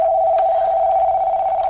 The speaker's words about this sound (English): Oh, man. How do I turn this phone off? Sorry, guys. This is a new phone. I don't know how to...